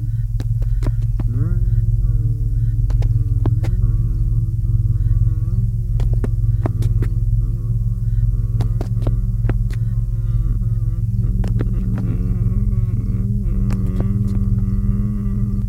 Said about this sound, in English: From your left, you hear stumbling footsteps and an all-too-familiar tuneless hum.